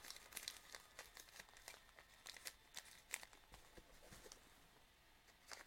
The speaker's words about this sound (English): And to do that, we'll take the scissors and we're just going to cut across the rim all the way across so that kind of closes inwards. Just cut across the rim, right, in all directions, and that close in.